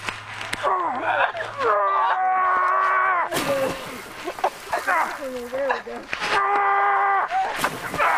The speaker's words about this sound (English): Yeah, you heard him dropping logs there. Big time.